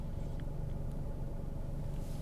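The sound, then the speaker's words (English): A car engine idles steadily after being left to stabilize at idle while its vibration is evaluated, a low, continuous rumble with a faint hum holding even throughout, no voices over it. “Now what we did then was we waited for the engine to stabilize idle, and now we evaluate vibration.”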